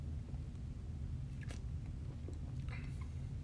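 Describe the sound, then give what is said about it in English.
A couple of brief, wet sips and swallows of a beer rated 50 IBU, over a steady low rumble with no one talking. “I don't want to just leave dead silence and awkward pauses of me drinking this, I'm going to go ahead and grab this beer. And give it a couple of sips here”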